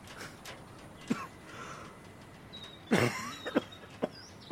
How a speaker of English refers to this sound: you should see a doctor about that cough.